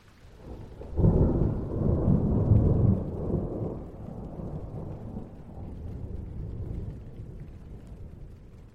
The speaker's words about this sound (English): The thunder and lightning from the storm had intensified. Normally, she found the rain peaceful